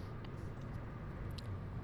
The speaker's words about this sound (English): That car is going 1,000 miles per hour.